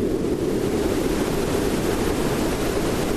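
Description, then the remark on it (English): A steady, dense wash of low, rumbling colored noise, constant in loudness and heaviest in the bass, resembling the continuous roar of waves at sea. No voices. “That sounds like you're out at sea in a boat.”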